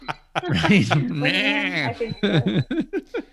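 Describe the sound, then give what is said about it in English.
A person's voice imitates a goat, letting out a long wavering bleat with a shaky vibrato, followed by a few short choppy vocal bursts, fairly loud. “Is it Will Forte who played the Goat Man in SNL?”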